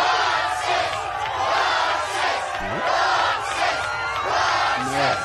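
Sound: crowd cheering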